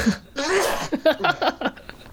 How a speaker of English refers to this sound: I gotta sneeze.